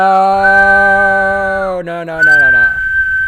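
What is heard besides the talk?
person whistling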